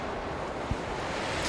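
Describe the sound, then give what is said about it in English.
A steady, roaring rush of storm wind fills the whole clip, broad and unbroken, with a faint low thump partway through and a slight hiss rising at the end. “a huge piece of stone is sent flying through the air, crashing into where Ernest was, and continuing along, pulled by the howling winds.”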